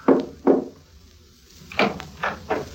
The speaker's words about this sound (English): There was a cautious knock on the door, repeated three times. It was Carl's signal.